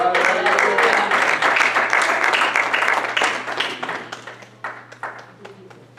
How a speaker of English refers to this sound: Come on, let's clap our hands for the Lord.